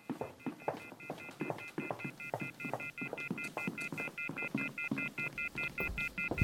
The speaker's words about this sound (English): The wall phone. It's off the hook, hanging down to the floor.